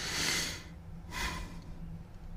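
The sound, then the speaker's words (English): A yawn at 3:16 in the morning, heard as a long, airy breath followed by a shorter breathy exhale, quiet and with no talking around it. “Sorry for the yawn.”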